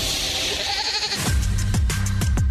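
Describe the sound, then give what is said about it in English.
A goat bleats loudly, a rapid run of four or so wavering cries following a brief wash of hissing noise at the start, a sound effect kept in the KSL Movie Show top 10 segment. “We kept the goat in.”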